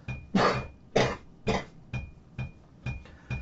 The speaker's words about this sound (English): Excuse me as I cough.